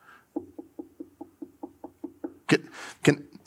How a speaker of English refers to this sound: Look, I stand at the door and knock. If you hear my voice and open the door, I will come in and I will share a meal.